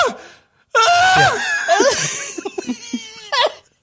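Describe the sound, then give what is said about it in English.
A voice imitates a man screaming in his office: a loud, strained, wavering cry with a brief pause and a short final burst, free of ordinary talk. “He's just, like, sitting there, like, screaming, because he's, like, bringing up all these memories and shit.”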